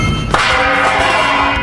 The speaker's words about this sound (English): His one functional hand clutches a second pot, ready to throw it at Ace. Ace ducks as the second pot flies past his head, striking the door frame behind him.